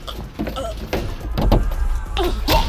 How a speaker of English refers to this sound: The bearded mountain slams me against the stove.